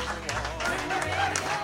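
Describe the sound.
Steady crowd applause, a dense wash of clapping with a few sharper claps poking through, while a voice talks over it.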